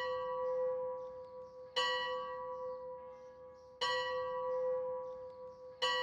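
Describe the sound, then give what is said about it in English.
A deep clock bell strikes three times at even intervals about two seconds apart. Each stroke has a bright attack and a long humming ring that carries on underneath the next. “The clock upbraids me with the waste of time.”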